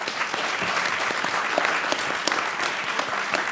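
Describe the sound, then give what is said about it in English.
An audience claps steadily for young people who have just spoken at an event, a dense patter of many hands at moderate volume, sustained evenly throughout without talking over it. “Can we just give them a round of applause quickly?”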